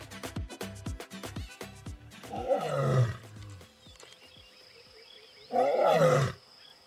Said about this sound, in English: Lions roaring on the savannah. It's not a comforting sound, but they're interesting animals to consider when exploring the division of labor between genders.